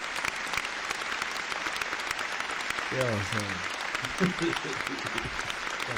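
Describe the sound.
A steady round of applause from a crowd, dense clapping filling the whole stretch, with a few voices calling out briefly partway through.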